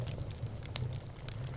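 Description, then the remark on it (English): A fireplace in an office crackles softly, with a low steady rumble underneath and a few sharp pops and snaps scattered across the moment. No one speaks. “It makes me think how cool it is that this building allowed me to install a fireplace in my office.”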